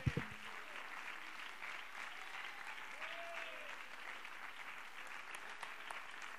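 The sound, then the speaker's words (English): A church audience claps hands unto the Lord steadily, a dense, continuous wash of applause, with a few brief voices or cheers faintly rising beneath it. “Come on, clap your hands unto the Lord right now.”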